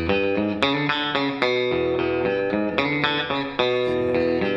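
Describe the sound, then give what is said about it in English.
Electric guitar notes and chords played through a small analog delay pedal set for slapback ring out, each sharp pick attack trailed by a quick single repeat over a dense, sustained tone. There is no talking. “Now, is that usually set up for slap?”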